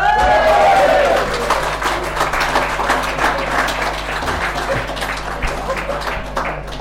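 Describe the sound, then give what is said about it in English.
A crowd applauds loudly for several seconds, dense overlapping claps forming a steady wash of noise, with a few whistles or cheers near the start before it gradually thins, welcoming three Ballyhays volunteers. “So when I announce them, I want you to give them a great round of applause.”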